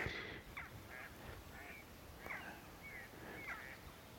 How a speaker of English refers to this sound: and two mallard just flying overhead, and very obligingly doing so too. That was rather lovely timing.